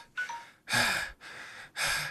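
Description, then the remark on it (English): Four sharp, forceful breaths alternate in quick succession, loud: rasping inhalations and exhalations done deliberately as mock full concentration breathing, with no talking over them. “I tried to use full concentration breathing, but you can't do it while talking.”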